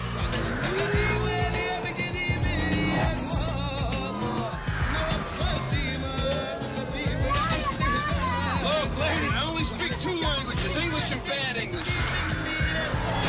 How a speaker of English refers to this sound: We're listening to an adrenaline-pumping car chase from the science fiction movie The Fifth Element.